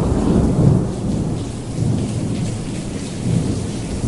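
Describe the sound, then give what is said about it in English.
Steady rain pours down while deep thunder rumbles low and continuous, swelling and easing throughout, with no voices present. “But anyways, the storm is coming in.”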